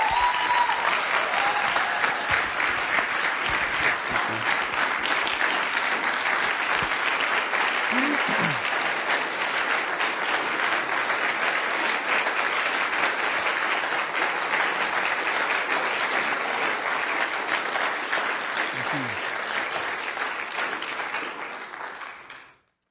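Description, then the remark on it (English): A sustained round of applause from a large crowd for a group of wounded military veterans, dense steady clapping holding at full strength for about twenty seconds before fading out quickly at the end. “Just one more round of applause for these guys.”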